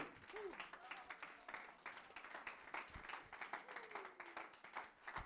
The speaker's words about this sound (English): Somebody clap, God, clap and give Jesus some praise.